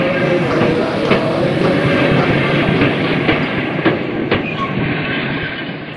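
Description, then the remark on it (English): A train rumbles with steady, heavy noise and scattered metallic clicks and clacks from the wheels as it begins to leave the station, fading slightly toward the end as it moves away. “The train begins to leave the station.”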